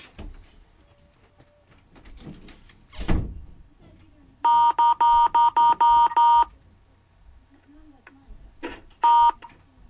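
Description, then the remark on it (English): A quick run of about seven bright telephone keypad beeps from a Skype dial pad, evenly spaced and fairly loud, followed a few seconds later by one more tone, with soft thumps and shuffling before them. “Go on and click show dial pad.”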